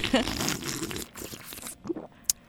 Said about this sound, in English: Sipping on some chai tea this morning. Yeah, chai tea. Courtesy of you, because you told me this is a good one. This is a good little mix.